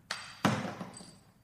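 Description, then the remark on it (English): A coin is flipped: a short metallic flick, then a moment later a louder, duller slap as it lands or is caught, with a faint high ring trailing off. No one speaks. “You got that coin in your hands. Flip it up.”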